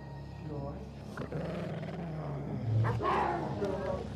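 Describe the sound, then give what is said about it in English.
A woman behaving in a wolf-like fashion makes low, throaty snarling and growling, fairly loud, rumbling on for several seconds and swelling into harsher rasping bursts toward the end. “She began to make noises, gnawing sounds, and snarling sounds, and growling sounds.”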